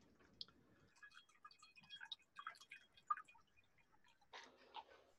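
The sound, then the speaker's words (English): A cocktail of Bombay Sapphire gin and Tio Pepe sherry is strained from a shaker with ice into a glass: a brief low rush of liquid, then scattered drips and small ice clicks, ending in a short splashy trickle, fairly quiet. “Pour into a glass. Strain.”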